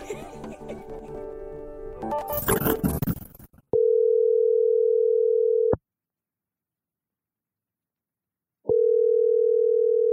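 After a few seconds of clattery handling noise, a steady telephone dial tone sounds loud for about two seconds, goes silent, then starts again, as a call is being placed.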